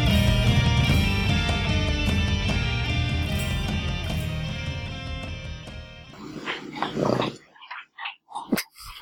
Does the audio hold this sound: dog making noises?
yes